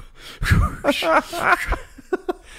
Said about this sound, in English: What if I start breathing? Start breathing heavy.